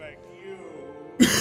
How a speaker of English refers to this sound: Well, I'm not even drinking coffee, and I'm already coughing.